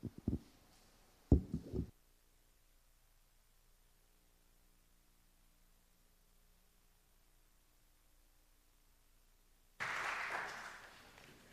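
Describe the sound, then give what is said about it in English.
After a few sharp knocks and a long hush, an audience abruptly breaks into steady, dense clapping for a financial report, filling the final couple of seconds with bright, hissy applause. “You better clap for that financial report, too.”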